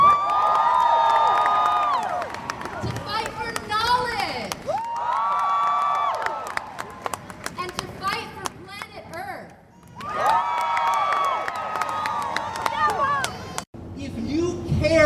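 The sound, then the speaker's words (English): A large outdoor crowd at a science march in the nation's capital, held in heavy rain, cheers and shouts in three loud, sustained surges, with a murmur of voices and scattered claps filling the quieter gaps between them. “The first thing we're going to do here is hear some snippets from a selection of these prominent scientists who addressed the crowd in our nation's capital.”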